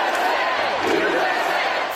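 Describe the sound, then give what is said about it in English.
A dense, steady roar of a large crowd cheering and shouting together, loud and sustained without pause, a wash of many voices blending into continuous noise, from about 5,000 supporters at an indoor Trump campaign rally in a warehouse outside Las Vegas, Nevada. “When's the last time you saw a crowd like this packed together indoors?”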